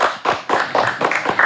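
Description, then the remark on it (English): The audience of the show Hot Boxing with Mike Tyson applauds a guest's introduction, many hands clapping at once in a dense, continuous patter with small rhythmic swells, fairly loud throughout and without any voices. “Clap that shit up.”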